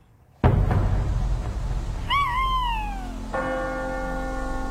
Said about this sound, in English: If that owl doesn't shut up, I'll strangle it.